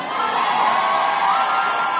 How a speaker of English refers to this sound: When, in a gymnasium packed with screaming supporters, out walked the new mayor of San Francisco. London Breed.